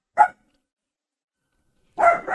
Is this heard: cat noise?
no